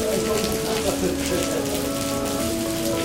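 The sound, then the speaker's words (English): Steady rain patters on a hard surface, a dense continuous hiss with faint tonal hum underneath, no one speaking. “It's raining, and we've walked a pretty good distance with all of our crap.”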